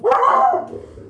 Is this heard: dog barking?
yes